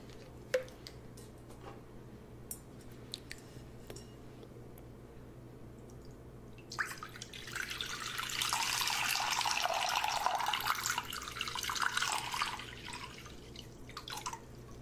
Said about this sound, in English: I'm just going to wet up your face just to make it easier to shave. I just want to get your skin a little bit soft. It's just easier to just shave through. Okay, so I'm just going to apply some warm water on your face.